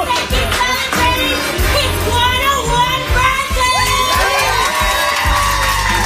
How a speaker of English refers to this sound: everybody in the place gave him a standing ovation and cheered as he stood there.